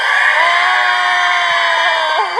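A loud, sustained cheer from an audience, many voices yelling and screaming together at a high pitch, holding steady for the whole stretch with a few rising whoops near the end.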